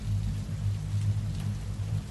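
Steady rain pours down in a continuous, even wash of noise over a deep low rumble, with no distinct drops standing out and no one speaking.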